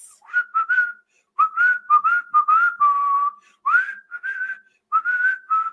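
A simple, clear whistled tune from a film soundtrack plays in short melodic phrases with brief pauses, some notes held longer, over a scene of kids doing crazy stuff. It is bright and steady at moderate loudness, with no voices.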